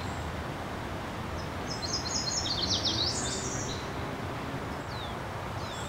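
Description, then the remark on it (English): Leaves of a tall, swaying cottonwood tree, shaped like plump green hearts, rustle steadily in the breeze, making a soft continuous hiss. A short run of high bird chirps rises and fades in the middle. “But it's always the sound of the rustling leaves that gets to me.”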